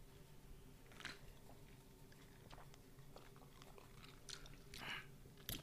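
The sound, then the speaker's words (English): Someone gulps down a shot of tequila, a few quiet wet swallows spaced out over several seconds with small mouth and lip noises in between, no talking. “Oh, I took 3 gulps.”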